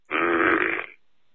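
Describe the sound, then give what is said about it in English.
A single loud, drawn-out fart lasting nearly a second, buzzing and throaty, recorded in a voicemail and heard over a thin, band-limited phone line before cutting to quiet. “Alright, maybe there's more voicemail than just getting farted on or toilet flushed.”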